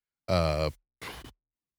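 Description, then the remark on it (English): A big yawn: a loud, drawn-out voiced groan that trails off, followed after a short pause by a breathy exhale. No other sounds around it. “Whoa, big yawn.”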